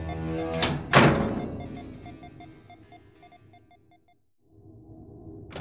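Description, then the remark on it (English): An airlock door, sealed from the cargo hold, slams shut with a loud metallic thud, followed by a steady run of short electronic beeps, a brief silence, then a low mechanical hum. “Seal the airlock door from the cargo hold”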